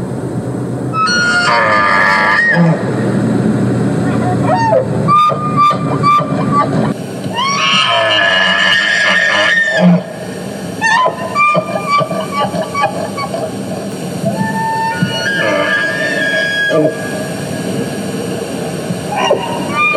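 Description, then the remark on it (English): Elk bugling in autumn in Yellowstone Park, along the road from the West Entry Gate at West Yellowstone to Madison Junction: several long, eerie, high-pitched whistling calls rise and fall in separate bursts over a steady low rumble, with lower grunting sounds between them. “this section of road from the West Entry Gate right there at the edge of West Yellowstone to Madison Junction is by far and away the best spot to hear this crazy, eerie call that the elk do in the fall in Yellowstone Park.”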